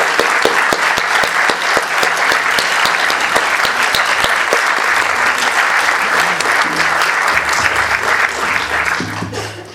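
An audience at a documentary screening applauds steadily for about ten seconds as guests are invited onto the stage for a Q&A, a dense wash of many hands clapping at a loud, even level that begins to taper off at the very end.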